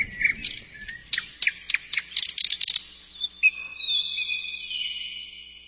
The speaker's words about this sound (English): I thought I heard some nightingale. Yeah, what an illusion. I must have been dreaming.